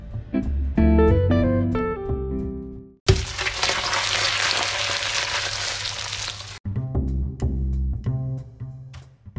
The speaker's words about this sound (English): Oh yeah, fire up the fry pan with some olive oil and get your onion, chilli and garlic sizzling.